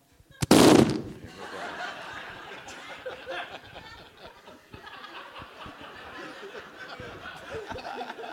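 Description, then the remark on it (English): A sudden, loud, violent fart bursts out for under half a second, followed by several seconds of steady snickering and chuckling laughter. “Such a violent, scary fart. Nothing cute about it.”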